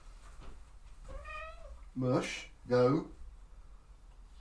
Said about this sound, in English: I can hear it meowing, but yeah.